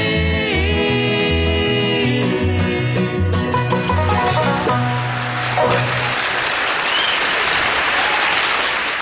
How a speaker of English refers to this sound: followed up by some applause. Was it pouring rain or applause? I don't know.